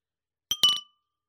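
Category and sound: household object, beer glasses clinking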